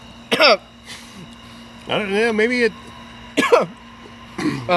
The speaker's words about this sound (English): I'm coughing a bit. That's not because of this. There's just a lot of dust flying up from the road.